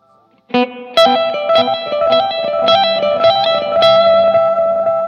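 An electric guitar plays a run of plucked notes drenched in delay and reverb, each attack blooming into a lush, overlapping wash of echoes that sustains steadily with no one talking.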